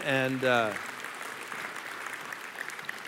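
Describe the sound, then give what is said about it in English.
A short burst of speech gives way to audience applause for those still standing: a dense, steady patter of many hands clapping that holds at a moderate level until the end. “So go ahead and applaud those who are still standing.”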